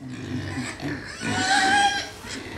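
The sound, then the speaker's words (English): Pigs grunt and snuffle in low, rough bursts, with one higher squealing note rising briefly in the middle over a steady farmyard background, at a rare breeds farm in Suffolk, England. “To find Britain's rarest pig, I went to Baleham House Rare Breeds Farm in Suffolk.”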